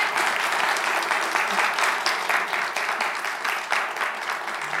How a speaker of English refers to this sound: So let's show some applause.